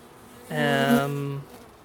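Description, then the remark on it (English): A honeybee buzzes around an open hive for about a second, a steady, fairly loud droning hum that starts abruptly and fades out, with quiet background before and after. “freshly hatched bees. The bees go through different cycles. There's little newborn bees like that one.”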